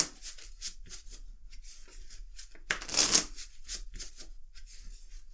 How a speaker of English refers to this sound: So, what you're going to hear is the sound of an ex-croupier shuffling some cards.